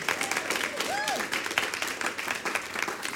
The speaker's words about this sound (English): You passed. Big round of applause.